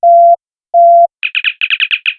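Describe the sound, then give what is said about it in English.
A sci-fi communicator opening chirp: two steady mid-pitched beeps followed by a rapid burst of eight or so higher, warbling chirps, loud and clean with no talking. “So let's open up the old communicator.”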